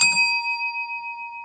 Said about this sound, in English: How come in 2002, as clear as a bell, look, as clear as this new bell I got, listen.